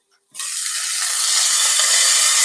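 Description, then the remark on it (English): Steady, bright sizzling of a chicken breast cooking in a pan on low heat starts abruptly after a brief quiet moment as the lid is removed, and continues as a dense crackling hiss, holding loud and even with no talking over it. “I'm going to carefully remove the top, and you can hear it sizzling, and frankly, I have it down on low at this point.”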